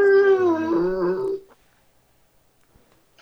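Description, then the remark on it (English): Aaron's dog howls once, a drawn-out wavering cry lasting over a second, fairly loud, then silence follows. “That is Aaron's dog.”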